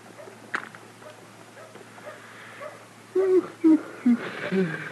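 animal, dog whimpering

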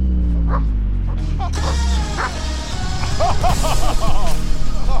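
animal, military working dog barking

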